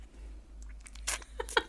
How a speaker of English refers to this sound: I just took a sip of my drink to palate. Pretend it's tea.